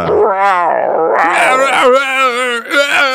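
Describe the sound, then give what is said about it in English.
A dog lets out a strange, warbling yelping howl, loud, rising and falling in pitch for about three seconds with only a brief catch near the end. “I figured it was so weird it had to be a dog because a person would sound more like an actual dog.”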